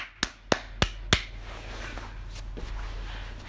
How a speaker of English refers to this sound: And if I could, I would put a people clapping and a round of applause, but I don't know how to do that, so I will just clap.